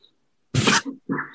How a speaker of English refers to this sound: I haven't been coughing all day. And like the second we get onto Zoom, I'm starting to cough because now I have to talk.